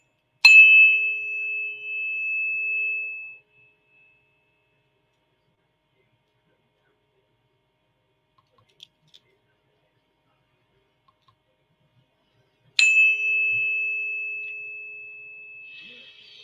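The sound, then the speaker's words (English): A tuning fork is struck twice, about twelve seconds apart, each strike giving a bright metallic ping that settles into a steady, pure ringing tone lasting a few seconds, with near silence in between. “Here, we're going to start with the 432 hertz.”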